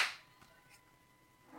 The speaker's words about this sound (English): Let's do the clap. 1, 2, 3.